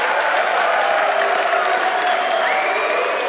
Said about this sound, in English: Thank you so much for hosting the Adam Ritz Show. Let's give yourselves one more round of applause.